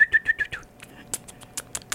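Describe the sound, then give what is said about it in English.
A person imitates a bird call with four quick, bright chirping whistles in a steady rhythm, followed by softer clicking, sucking mouth sounds. “And those people that can do bird calls.”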